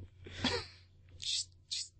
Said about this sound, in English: She's sneezing for attention.